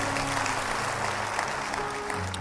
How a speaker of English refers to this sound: Clap your hands as you take your seat.